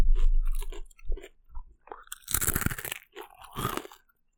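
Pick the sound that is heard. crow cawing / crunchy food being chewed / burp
crunchy food being chewed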